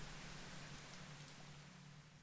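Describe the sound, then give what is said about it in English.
Steady, dense icy rain pelts down in a continuous hiss of drops, with a low rumbling undertone beneath it; no voices, just the wash of a heavy downpour. “Icy rain pelts your body, soaking you through to the bone.”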